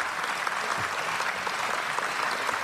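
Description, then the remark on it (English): Steady applause from an audience, many hands clapping in a dense, continuous wash of sound at an even level with no voices standing out. “I hope the applause means that you understood that that has something to do with the second law of thermodynamics and not...”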